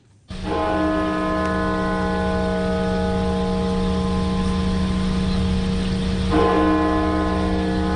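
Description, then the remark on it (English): The mourning bell of Washington National Cathedral, USA, tolls, tolled 500 times, once for every 1,000 people who died of coronavirus in the US. Its deep first stroke rings out in a long, humming sustain before a second stroke lands near the end; loud and resonant, with no voices. “Washington National Cathedral has tolled its mourning bell 500 times, once for every 1,000 people who've died.”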